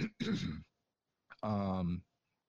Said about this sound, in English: Sorry, I keep having to clear my throat.